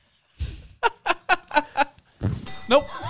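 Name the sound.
bell ringing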